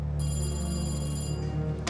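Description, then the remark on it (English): The Chicago Tribune's telephone rings steadily for about two seconds on June 26th, a sustained electronic bell tone with bright harmonics, heard alone with no talking. “So when the Chicago Tribune's phone rang on June 26th, a doubtful reporter picked up.”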